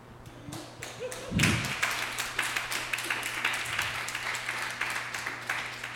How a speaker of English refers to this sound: Y'all clapped too early.